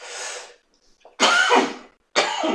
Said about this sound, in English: Excuse the coughing, guys. I'm sorry. I've had complaints that, can't you edit out the coughing? No, I'm not going to edit out the coughing. I critique weed. What part of weed smoking don't you understand? There's going to be coughing involved.